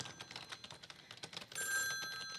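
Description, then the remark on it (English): A telephone bell rings out loud, a bright sustained trill starting partway through, preceded by a flurry of quick clicking taps like keys being struck. “Must we have this conversation every time the phone rings?”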